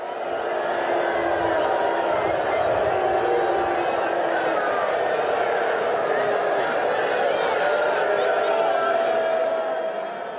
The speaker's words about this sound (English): I mean, Seth, you could hear the boos. Totally. And as he started approaching the tunnel, the crush of boos got louder and more personal.